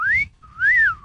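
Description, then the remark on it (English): A person whistles two short melodic phrases in a studio audition for a whistle, each phrase rising then gently falling in pitch, fairly loud, with a faint airy breathiness underneath and a brief pause between them. “We literally auditioned in the studio every single person for a whistle.”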